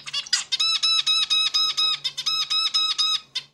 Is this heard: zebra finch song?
yes